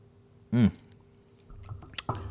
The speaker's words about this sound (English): So we're going to cheers to new hobbies, and we're going to take a little sip, a little sipping tin. We won't take the whole shot, but.